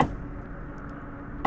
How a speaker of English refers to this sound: No, he knew a knock was coming. I heard the knock. That is Jesus Christ being hammered to a cross.